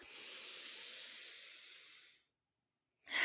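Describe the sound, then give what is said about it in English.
A long, airy inhale lasting about two seconds, steady and hissy, followed by a pause of silence before another breathy sound begins. “Breathing in.”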